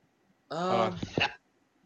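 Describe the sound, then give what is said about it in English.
A single loud sneeze: a strained, voiced intake building up, then a harsh, noisy burst, lasting under a second and sounding uncomfortable. It stands alone against near silence. “That sneeze really hurt.”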